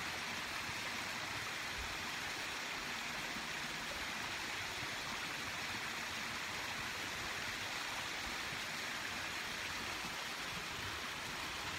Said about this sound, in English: There's definitely some water flowing. It's kind of nice because it drones out the sound of that power box or something that's making noise when the water's not running.